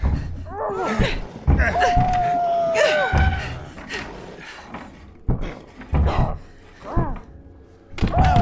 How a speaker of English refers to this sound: Really strong for an old guy, isn't he? He's gonna knock down the barricade if he keeps at it. Push everything back into place.